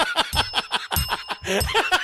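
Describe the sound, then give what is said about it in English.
A small bell rung over and over in quick, rapid dings, fairly loud, its bright tone lingering and ringing on between the strikes. “I almost just broke the bell.”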